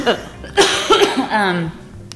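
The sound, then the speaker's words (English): A person with allergies coughs a few times in short, harsh bursts, followed by a brief throaty vocal sound as the coughing trails off. “I'm going to cough regardless.”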